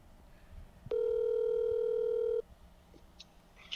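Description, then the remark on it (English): A telephone dial tone sounds as a call is placed, a steady, unbroken hum for about a second and a half, loud, then cuts off abruptly, leaving only faint background noise and no talking. “We should give him a call.”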